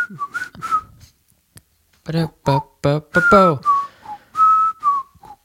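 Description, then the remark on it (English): A person whistles the bright, bouncy theme tune of The Andy Griffith Show, a few quick notes, then pauses while voices briefly chime in, before the whistling resumes and trails off. “Go ahead and whistle it.”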